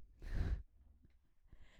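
human body sound, yawn

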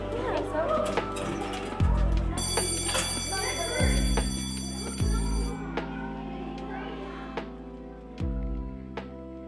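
signal or alarm, school bell ringing

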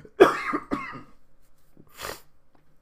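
human body sound, coughing and throat clearing

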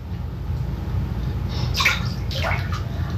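household object, water splashing

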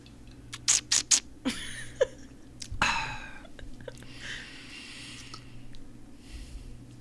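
food or drink, slurping a drink

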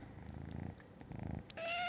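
animal, cat meowing

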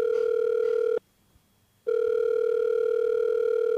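signal or alarm, telephone dial tone

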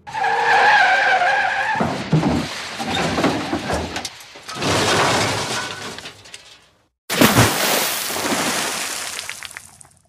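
vehicle, car skidding and crashing

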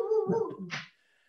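animal, dog making noise

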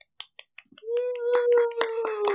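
crowd, people clapping

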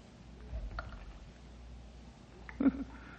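nature, water dripping

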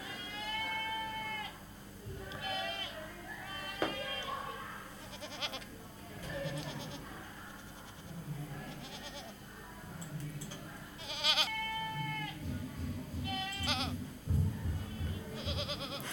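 animal, goat bleating

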